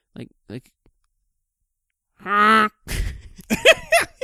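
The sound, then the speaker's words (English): A voice imitates a big bird's cry: a sustained, harmonic squawk after two short clicks, followed by a few rising, warbling calls with breathy bursts. “Do you just, like, sit in your bed just at night, just, like, making weird-ass bird noises?”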